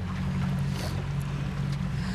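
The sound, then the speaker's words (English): A boat runs steadily across the water, its low engine drone humming constantly beneath a wash of wind and splashing noise, fairly loud with no voices. “I can tell you on a boat.”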